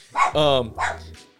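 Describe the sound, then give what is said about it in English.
A dog barks loudly, a quick run of two or three sharp, throaty woofs in about a second, then falls quiet. “Oh, the dog is tripping.”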